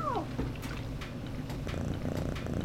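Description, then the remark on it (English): A cat named Bibi, just caught under a laundry basket, lets out one short meow that slides downward in pitch, then settles into a steady, low rumbling purr for the rest of the moment. “Let's return this cat already.”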